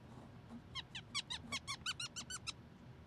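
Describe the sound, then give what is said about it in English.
A cork twists out of a rum bottle with a rapid series of about ten sharp, high squeaks, fairly loud, over a low background rumble. “It wasn't a big pop, I got the but the squeaky was I have to give you kudos because you didn't make me have to get rid of that pesky cellophane on there.”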